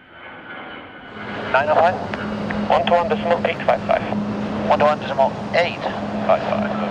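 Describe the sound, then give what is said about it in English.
A steady aircraft engine drone hums throughout with a low constant tone at Observation Deck B of the airport in Zurich, as planes arrive for the WEF in Davos, while a person talks over it in the foreground. “I'm currently at Observation Desk B at the airport in Zurich.”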